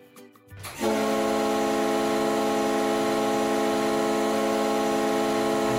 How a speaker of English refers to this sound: Now there's got to be a horn on this thing somewhere. There is, and it's on a boat. It's not a horn. It's a whistle. Push this little button. Go ahead. This is it. Yes.